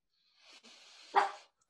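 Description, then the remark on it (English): A pet dog gives a short, rough bark that swells into one sharper, louder burst near the end, heard alone with no one talking. “My dog barking as you asked that question.”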